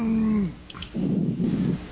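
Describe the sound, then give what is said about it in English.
A dog lets out a short, drawn-out whine, followed by a burst of scuffling and rustling as the dogs move around, with no one talking. “All right, so you got those dogs under control?”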